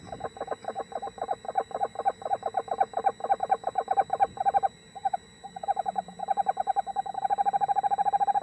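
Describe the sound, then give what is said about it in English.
An owl in a video gives a long run of rapid, evenly spaced calls, fairly loud, with a brief pause midway before the trill resumes and speeds into a steady, continuous patter. No one speaks. “I see nothing in this video that shows that an owl's an alien”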